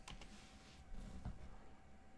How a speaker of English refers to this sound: Oh, man, I've done it again. Sorry, guys. Typing into some bloody...